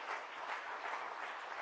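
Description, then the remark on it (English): A crowd gives the Lord a hand clap, breaking into sustained applause, many hands clapping together in a dense, steady wash of sound that stays loud and even throughout, with no voices standing out. “If you meant it, give the Lord a hand clap then.”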